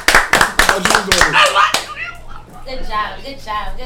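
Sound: hands clapping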